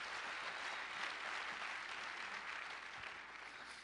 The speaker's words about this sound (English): Now, tonight, we're dealing with, you can clap for that. That's a good thing to clap for.